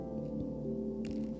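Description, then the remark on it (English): Liquid pours steadily into a cup, a soft continuous trickle with a faint ringing tone, and a brief splashy burst near the end. No one speaks. “See yourself as a cup. I've been pouring a lot. I don't know if you guys can hear it.”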